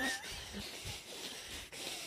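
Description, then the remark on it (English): Someone imitates heavy nose breathing: airy, hissing exhales pushed out in a steady stream with a brief pause near the end, and no speech. “Them nose breathing faps.”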